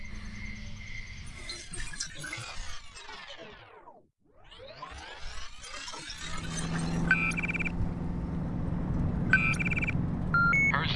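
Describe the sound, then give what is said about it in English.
A swelling whoosh fades to near silence, then builds into a steady low road rumble of a car driving, with a few short electronic beeps chiming over it. “Just catching up on paperwork while the car drives.”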